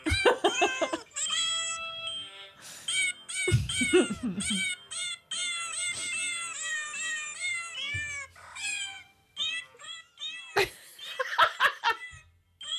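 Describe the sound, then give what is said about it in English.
A cat meows over and over in high, drawn-out, strained cries that come in quick succession, loud, with brief bursts of laughter mixed in. “My cat's actually traumatized.”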